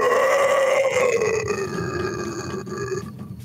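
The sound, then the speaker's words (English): A voice imitates a boar wounded by an arrow in a soft spot underneath its neck, with one long, strained grunting groan that slowly sinks in pitch, rough and loud throughout, fading out near the end. “It finds a place underneath the neck in a soft spot where there's no crystal yet, and you hear the boar go.”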